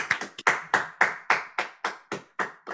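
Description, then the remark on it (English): A short round of applause: about ten sharp, crisp hand claps in a steady, evenly spaced rhythm, fairly loud, with no voices. “So, one more time, round of applause.”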